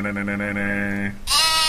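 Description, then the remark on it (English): A single drawn-out sheep bleat, loud, with a wavering tremble, cut off by a sudden burst of bright, noisy sound at the end. “There are sheep.”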